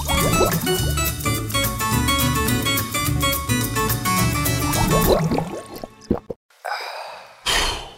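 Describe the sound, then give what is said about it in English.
Music plays, then cuts off and is followed by short bursts of splashing, gurgling water pouring from a water cooler into a cup in a break room. “Let's head over to the break room and get us some drink at the water cooler.”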